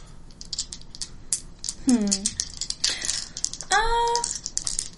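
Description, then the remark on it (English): Four dice clatter and rattle across a hard surface in quick, irregular clicks while wordless voices make brief drawn-out vocal sounds over the tumbling. “So why don't you make that roll 4 dice.”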